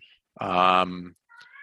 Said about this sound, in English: That is Jake's cat making a guest appearance, obviously fired up about these Porthole mesh jerseys.